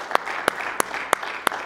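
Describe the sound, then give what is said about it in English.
An audience clapping together for the Lord, a dense wash of hands with sharp, louder claps landing in a steady, even beat about three times a second. No one speaks over it. “Let's give the Lord a hand clap together tonight, please, if you don't mind.”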